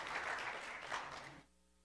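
A crowd breaks into dense, steady applause that holds for over a second, then cuts off abruptly, leaving only a faint low hum behind.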